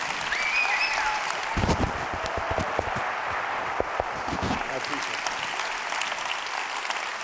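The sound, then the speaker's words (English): An audience at Brookwood breaks into warm applause welcoming a guest preacher on his first weekend there, a dense, steady wash of many hands clapping that carries on for several seconds, with a few sharper claps standing out near the middle. “Let's not clap.”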